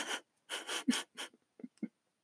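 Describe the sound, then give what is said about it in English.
Several sharp, breathy gasps in quick succession, fairly loud, as a voice acts out a woman's big gasp on being told she'll be shot again, followed by a few short, soft voiced sounds. “And then she replied, oh! I wrote big gasp.”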